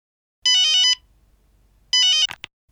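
A telephone rings twice with bright electronic warbling tones, each burst lasting about half a second, loud, followed by a quick click as if the receiver is picked up.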